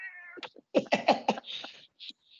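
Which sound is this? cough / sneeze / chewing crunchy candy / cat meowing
cat meowing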